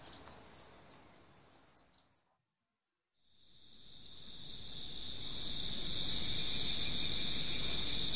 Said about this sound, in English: First, I heard the insects come back.